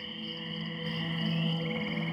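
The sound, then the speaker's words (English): A dense, steady night chorus of insects trilling and chirping, with low droning calls like frogs woven underneath, forming a continuous swampy ambience with no voices. “The room warms, and her humming becomes a song, croaked in a deep voice that melds with the songs of the swamp outside.”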